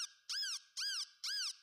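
Three bright, squeaky honks from a duck squeaker toy, evenly spaced and fairly loud, each with a rising-then-falling pitch and a brief high whine between them; no voices.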